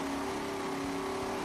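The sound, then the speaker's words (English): A boosted car engine runs on a dyno with a steady, loud mechanical drone and a constant low hum, with no voices. “Start it up. Come on.”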